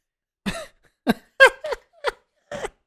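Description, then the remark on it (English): A string of six short, sharp hiccup-like bursts mixed with small coughs, fairly loud, coming in an uneven rhythm with brief pauses between them and no talking. “Oh, it was that hiccup with a mini cough.”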